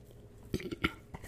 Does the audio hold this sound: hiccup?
yes